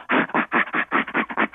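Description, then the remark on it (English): Chimpanzee laughter: a rapid, rhythmic series of about eight breathy, guttural in-and-out pants, each huff short and evenly spaced, with no talking. “Okay, it's an in-and-out panting sound.”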